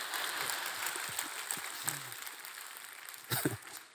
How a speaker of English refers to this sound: Go ahead, clap your hands.